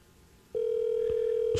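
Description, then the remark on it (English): A telephone line picks up with a steady, loud dial tone humming continuously, interrupted by a couple of brief clicks like keys being pressed as someone dials a phone to call a woman. No one speaks. “Let's, I'm going to call her here.”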